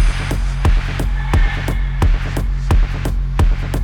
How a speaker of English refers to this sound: Do you hear it? Curious humming sound that seems to come from inside the object. I'll move the microphone nearer. Here. Now, we're not more than 25 feet away. Can you hear it now?